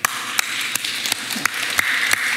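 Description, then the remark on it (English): An audience applauds in answer to a poll asking who would get an intelligence edit to their genome, a steady wash of hissy clapping punctuated by a few sharper claps that land in an even rhythm, roughly three per second, at moderate loudness. “Okay, by round of applause, how many of you would get an intelligence edit to your genome?”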